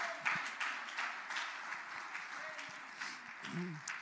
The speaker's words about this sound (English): I'm going to invite you to just clap your hands with me a little bit and, oh, hallelujah.